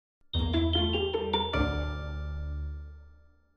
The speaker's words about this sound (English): That night, we hear 12 chimes of the grandfather clock in the main hall of House Mintor.